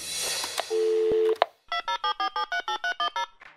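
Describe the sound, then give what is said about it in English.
A call to the Wow in the World show's phone line: a brief burst of noise and a steady low electronic tone, a click, then a telephone ring of about ten quick, evenly spaced bright pulses before the line goes quiet. “Hi, thanks for calling Wow in the World.”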